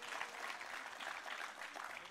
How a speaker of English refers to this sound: Amen. Applaud the Lord and let it go for just a second.